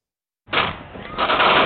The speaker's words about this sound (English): Gunshots. Panic on parade in Kansas City. A Super Bowl celebration hijacked.